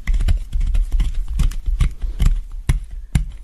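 Soap being carved: a series of crisp cutting and scraping strokes with soft low thumps, coming in an irregular rhythm, fairly loud and with no voices.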